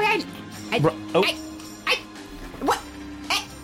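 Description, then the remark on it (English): A dog named Molly barks in short, sharp yaps, about five or six of them spaced irregularly over a few seconds, moderately loud, with a steady low hum in the background. “There's a dog barking.”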